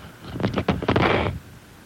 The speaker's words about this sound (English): Did you dump me? No. You dumped the phone. I dropped the phone on the floor is what I did. I mean, dropped the mic on the floor. Probably broke it.